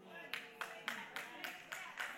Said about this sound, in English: Look at your clapping.